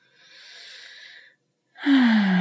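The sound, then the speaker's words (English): A deep conscious breath: a slow, airy inhale lasting over a second, a brief pause, then a louder, fuller exhale with a voiced sighing tone, with no talking. “Catching yourself when you're not breathing or when you're breathing really shallow and up into the chest and taking a few conscious breaths.”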